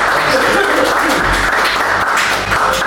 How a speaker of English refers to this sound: And another big applause for all of our readers today. You've all been fantastic. Thank you very much.